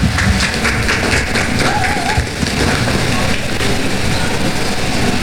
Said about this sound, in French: Encore une fois, vous pouvez les applaudir s'il vous plaît. Allez, encore plus fort.